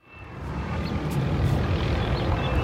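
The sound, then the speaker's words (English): A police helicopter patrolling a beach flies overhead, recorded on an iPhone, its engine and rotors making a loud, steady roar with heavy low rumble that swells up within the first half second and holds. No voices are heard. “Not just that, there were helicopters patrolling the beach, ordering people to go inside. I took this video of one just on my iPhone.”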